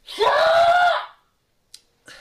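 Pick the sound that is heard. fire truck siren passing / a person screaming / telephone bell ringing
a person screaming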